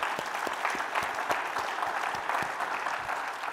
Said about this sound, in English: Can we give God another clap offering, please?